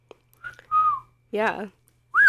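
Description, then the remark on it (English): Several short whistled notes sound clearly inside a house, one sliding upward at the end, separated by brief pauses and a short voice-like sound in the middle. “They kind of just start talking, and right off the bat, they hear a whistle.”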